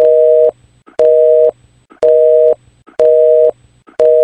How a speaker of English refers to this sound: back in the day when you would call a phone number, like a house phone, if that person was already on the phone, then you get a busy signal. I will play the sound effect here for our listeners who might have never heard it.